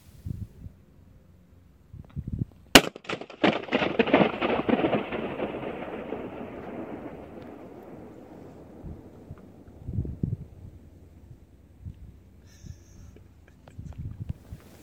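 A single sharp balloon pop, made by audio engineers inside a cooling tower in Washington that was meant to power homes and is now used for audio recordings, sets off a long, booming echo that rolls and fades over several seconds, followed by faint low thumps and rustles.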